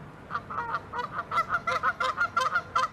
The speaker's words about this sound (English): That is one angry goose.